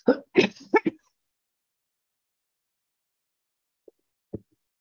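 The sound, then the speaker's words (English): A cluster of harsh throat-clearing coughs, four quick rough bursts in under a second, followed by silence and then two small faint clicks near the end. “I'm going to keep coughing if I don't.”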